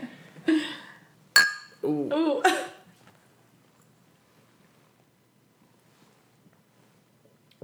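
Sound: drinking glasses clinking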